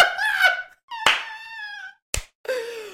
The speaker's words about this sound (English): This is your ringtone, right, in high school? Unfortunately, yes.